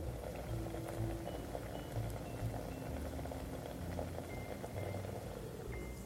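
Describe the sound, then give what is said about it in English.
Cream with carrots, snuggled in a single layer, just starting to simmer in a pan: a steady low bubbling hiss with faint scattered pops over a soft background hum, continuous and even throughout with no talking. “Can you hear that simmering just starting to happen?”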